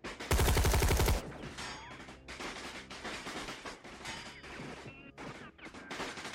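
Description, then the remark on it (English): Heavy gunfire from many weapons at once against a sanctuary's walls: a deafening burst of rapid automatic fire, then sustained overlapping volleys of shots crackling and echoing, with no voices. “The sounds of the night were silenced by the roar of weapons firing.”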